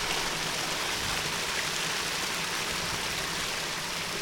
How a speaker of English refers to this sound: You run the water, you put your boat on this little water slide, and the boat travels about 50 metres round the corner, 60 yards for our American listeners.